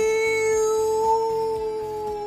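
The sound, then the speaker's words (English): A long, sustained farewell wolf howl holds a steady mid pitch, lifting slightly midway, over a rhythmic low pulsing beat that repeats throughout. No one speaks. “And with that, the adventurers bid farewell to the big teleporting wolf, who sent them away with one last howl.”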